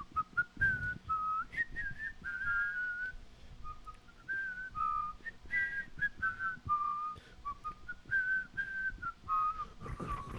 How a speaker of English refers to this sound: Can you trill whistle?